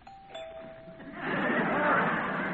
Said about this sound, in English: Because somebody rang the doorbell.